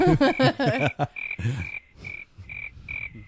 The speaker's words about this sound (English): You get crickets.